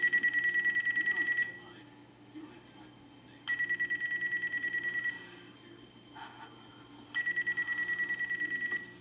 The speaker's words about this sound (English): Why did everyone just freak out when her phone rang?